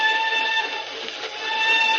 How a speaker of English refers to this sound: I say, the old whistle do sound eerie tonight, don't she? Yes. I always says there's nothing so lonely as a train whistle going along across country after everyone else is safe in bed.